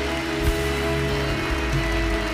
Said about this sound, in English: Could we give him a hand clap of praise? Hallelujah.